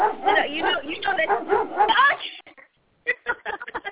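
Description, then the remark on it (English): Dogs bark and yip loudly in a rapid, overlapping flurry for a couple of seconds, then a brief silence before a few short, choppy sounds, with some speech-like vocal sound mixed in. “Yeah, you know, we got to hear the dogs. Let's go for the dogs.”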